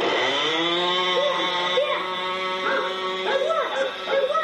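A son's model airplane engine runs with a steady, high-pitched buzzing drone throughout, while a dog yelps and whines in short bursts over it.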